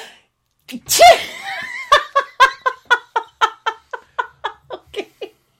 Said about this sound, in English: I am, and I'm going to sneeze. Bless you. We'll wait. I might sneeze again.